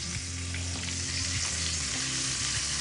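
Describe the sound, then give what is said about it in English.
Thin-cut chicken sizzles steadily in a hot pan as it browns and crisps, a dense, even crackling hiss that never lets up, with a low steady hum running underneath and no voices. “You're getting a little brown, a little crispy, but it's not gonna get that deep, dark brown as if you're using the breadcrumbs to fry them up.”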